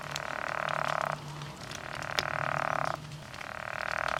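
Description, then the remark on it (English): A pickerel frog gives three long, rasping snore-like croaks, each about a second, separated by short pauses, steady, with a low background drone and no talking. “Don't eat a pickerel frog. Not a good idea. But I will play what they sound like, just so you know.”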